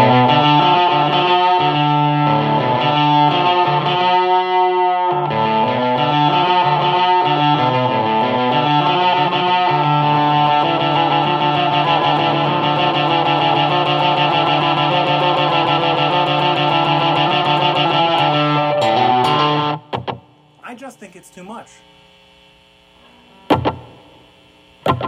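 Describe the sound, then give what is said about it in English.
An electric guitar played through a multi-effects pedal with the distortion turned up high plays loud, sustained chords and riffs for about twenty seconds, thick and saturated, then cuts off abruptly, leaving brief clicks and quiet handling noise. “You can hear that it is pretty well up there.”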